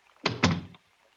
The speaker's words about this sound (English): And close the door.